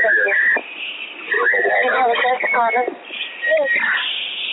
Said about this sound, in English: So there's a lot of interference on the call. Like, it's pretty hard to make out.